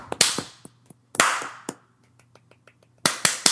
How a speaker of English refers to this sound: Is can we all give a golf clap for Spitfire?